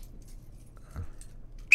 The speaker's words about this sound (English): And that's the Jew whistle.